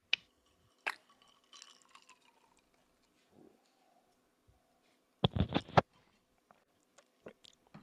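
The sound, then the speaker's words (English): Someone drinks with soft, scattered slurps and liquid sounds, then a short cluster of louder gulping, glugging noises, followed by a few faint wet clicks. The sounds are fairly quiet, with no talking. “Is that because you heard slurps like ice and it sounded so nice?”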